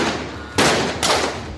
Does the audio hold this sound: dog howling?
no